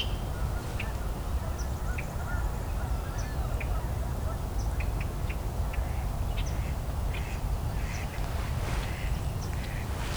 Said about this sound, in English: Okay, I've got some mallards. Oh, those are flyovers.